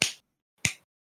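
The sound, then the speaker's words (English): Two sharp hand claps, about half a second apart, each a crisp, bright smack with a short decaying tail, heard alone with silence between and after. “My claps aren't picking up very well.”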